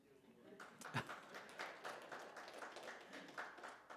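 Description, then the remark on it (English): A crowd breaks into steady applause, many hands clapping at once in a dense, continuous patter that holds for several seconds, with a few sharper claps standing out near the start. “Well, that deserved a clap.”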